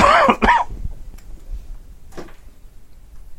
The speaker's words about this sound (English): Just let me know when you're going to cough.